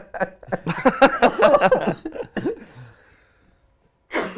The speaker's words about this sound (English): So sorry about the cough.